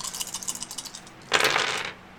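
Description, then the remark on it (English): Damage dice, two d8s plus a d4 and two more d8s, clatter and tumble across a hard surface, a quick run of bright clicks followed by a denser, louder rattle as they settle. Crisp, with no voices. “So that feels so good. Click, click, dice, make brain.”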